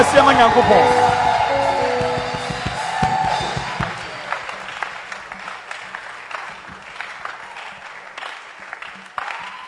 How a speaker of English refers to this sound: Oh, put your hands together for the Lord.